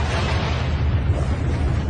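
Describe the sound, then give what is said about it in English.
A missile explodes against a ship's hull in a heavy, loud rumble, a dense low roar with crackling noise that holds steady for the whole stretch, with no voices present. “Now the explosion came.”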